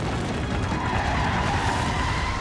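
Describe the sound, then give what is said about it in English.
Car tires skid and squeal loudly and steadily for a couple of seconds, a harsh sustained screech over a rumbling engine, as an old car going about 85 miles per hour fishtails and nearly tips over after its left front tire blows out; continuous with no one talking. “His left front tire blew out and Gaskins lost control. The car began fishtailing and nearly tipped over.”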